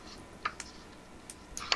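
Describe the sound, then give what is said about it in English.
Soft crinkles and quick papery ticks as paper sheets that are sticking together are pulled apart and handled, a few brief bursts scattered over a quiet background with no talking. “Oh, paper's sticking together.”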